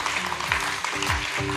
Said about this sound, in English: Come on, let's give God a big clap. Amen. Praise God.